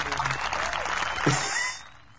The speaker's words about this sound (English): Where's my clap button? Here it is.